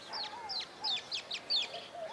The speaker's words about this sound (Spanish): Puedes escuchar los chillidos de los luisitos comunes, las voces graves de las palomas alas blancas y tortolitas cola larga, el canto hermoso del pinzón mexicano, y por todas partes, las llamadas de los chipes.